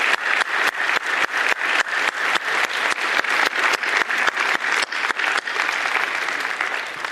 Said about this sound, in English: I want us to thank those who went before us and made sure we have a place here that we can worship today. Let's do it with applause and with your voice. Thank you. Thank you.